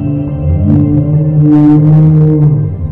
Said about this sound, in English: I got spooked for a second when one of those giant transport creatures went by, almost hitting me and letting out a long, deep moan.